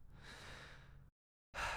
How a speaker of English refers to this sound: It was beautiful. Sorry for sniffling again.